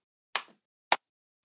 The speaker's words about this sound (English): Golf clap there.